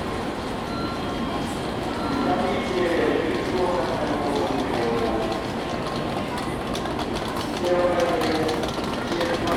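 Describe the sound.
Busy Shinkansen platform ambience at Kyoto Station, Japan: a Nozomi train hums and rumbles steadily while indistinct voices murmur underneath, the whole scene holding a constant, fairly loud level throughout.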